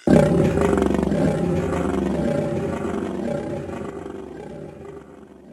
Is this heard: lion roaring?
yes